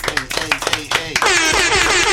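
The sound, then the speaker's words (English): A quick burst of sharp hand claps mixed with voices, welcoming a special guest, followed by a steady, loud wash of noise as the clapping runs together. “Clap it up one time.”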